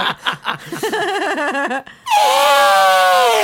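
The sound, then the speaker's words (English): A man's voice imitates an elephant, starting with short rising squeaks and a wavering cry, then a brief pause before one long, loud, brassy trumpeting blast. “I can do an elephant.”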